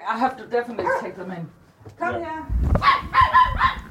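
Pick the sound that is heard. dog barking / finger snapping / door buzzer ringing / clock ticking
dog barking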